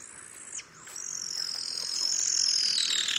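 A sooty owl's call in a wet forest of towering gum trees, vines and ferns just before sunrise: a single loud, high-pitched whistling screech that slides slowly downward for a couple of seconds, preceded by a brief higher note, with no voices.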